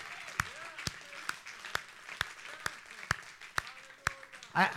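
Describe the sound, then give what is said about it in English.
An audience claps in a steady rhythmic beat, about ten sharp claps in unison, over a low murmur of voices, ending in a louder burst of noise. “You just stop writing and clap your hands and say, amen, my love is increasing.”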